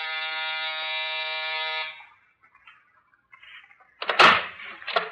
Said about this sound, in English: Penthouse. That's the buzzer over there.